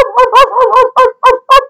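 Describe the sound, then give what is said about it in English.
A dog, Sparky, barking while being petted in a front yard, in a quick run of about seven loud, harsh yaps, the first few tumbling together and the last ones evenly spaced, with no talking. “Now, when we would pet it, and it just keep barking.”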